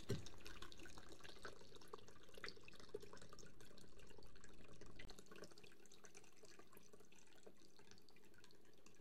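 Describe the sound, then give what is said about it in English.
A pineapple margarita made with Patron and pineapple juice pours steadily from a shaker into a glass for about five seconds, a continuous splashing trickle, then thins out and stops, leaving quiet room tone. “Let's pour up our margarita, our pineapple margarita.”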